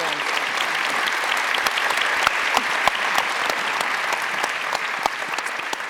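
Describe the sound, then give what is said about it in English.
A crowd applauds equity ambassadors, clapping steadily for the full six seconds: a dense, even wash of hand claps with sharp individual claps popping out now and then, and no voices rising above it. “So before I bring up the other equity ambassadors to do a little bit of conversation before we open it up for Q&A, please, please give a round of applause to those.”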